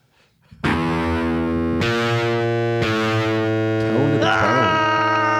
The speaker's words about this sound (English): Sick guitar riff right there, man. Thanks. Great tone. I picked on that up this guitar. Black SG and it just kind of like poured right out of me. It's really creamy lick.